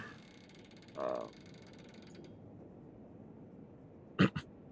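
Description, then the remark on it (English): A door creaks open down a hallway as people go to bed, one short, muffled groan against a quiet background, followed a few seconds later by two brief clunks. “They were opening the door down the hall. Just hear …. He's like, ah, I need to put some oil on this.”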